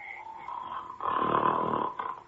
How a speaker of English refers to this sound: Whatever in the world is that roaring, snoring sound? Yeah. Oh! It's a giant! Asleep. Right in front of me in a clearing. On the highest point of the mountain.